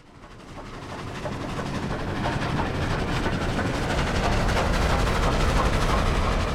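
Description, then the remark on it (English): A steam train rumbles along the rails with a dense, steady clatter that swells over the first second and then holds loud, with no voices. “Galatz is 38 hours from here, and the first train for Galatz leaves at 6:30 tomorrow morning.”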